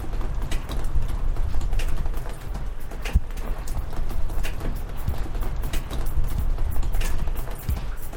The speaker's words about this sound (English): Can you hear it? It's right there, in the rhythm of the raindrops on my window.